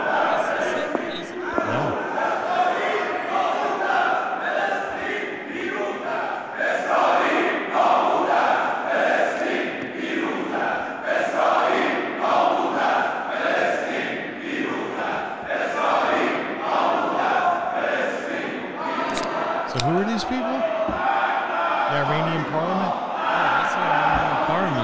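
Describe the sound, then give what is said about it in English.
A large crowd yells the chant "Death to America" in unison, a loud, dense roar of many voices rising and falling in rhythmic bursts that continues steadily without pause. “Yelling death to an America!”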